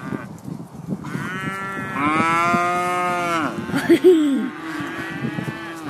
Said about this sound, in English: Sound like an elephant. I think there's an elephant in there. It's madness. Oh, that's made my day, that's those cows.